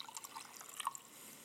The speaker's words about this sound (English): It's hot water. You know, I brought a tea back here. Do you know what kind of tea this is? Do you know anyone? Know anyone can guess? You may guess, but you can't tell, right? Until I pour hot water into my cup.